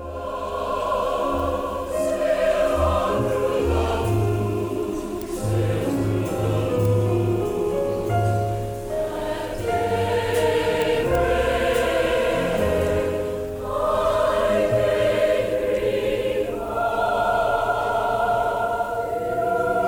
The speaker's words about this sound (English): I asked him for a medley of, let's take songs about going through a whole day. They're all different songs, they're all different moods slightly, but he just blended them together.